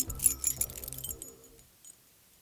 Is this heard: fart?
no